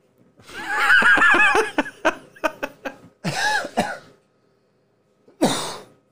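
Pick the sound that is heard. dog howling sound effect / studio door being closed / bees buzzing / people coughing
people coughing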